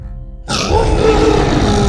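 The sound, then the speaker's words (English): A creature named Buck roars after a faint low hum, loud, rough and gravelly, holding steady for over a second with no voices over it. “Buck roared.”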